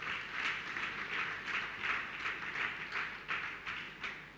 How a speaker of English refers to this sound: In the name of Jesus. Clap our two hands for Jesus.